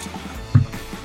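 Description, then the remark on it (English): A single short, soft sip of water, a brief wet gulp in the middle of an otherwise quiet stretch, with no one talking. “I should have taken my sip of water, but here we go.”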